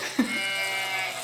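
A single sheep's bleat, a short, nasal, wavering cry heard close up with nothing else around it and no talking, fading out after about a second.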